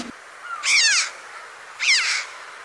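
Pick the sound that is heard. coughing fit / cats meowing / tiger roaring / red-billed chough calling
red-billed chough calling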